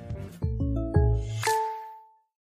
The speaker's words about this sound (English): Top 10 all-time chime, like, you know, the Netflix chime's up there. I don't, you know, but like the State Farm chime just makes you feel good.